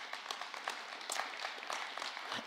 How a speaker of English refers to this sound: And I want you to just put your hands together and just applaud them for their service to this congregation.